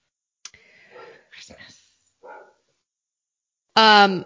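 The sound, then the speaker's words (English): A dog lets out one loud bark at the very end, following a few seconds of quiet, muffled voices and soft rustling in the background. “My dog is so crazy.”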